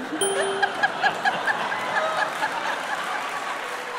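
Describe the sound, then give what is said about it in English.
A steady, dense patter of audience applause lasting about four seconds, with a few faint tonal notes ringing over the clapping and no voices. “Don't, you don't have to applaud that, for God's sake.”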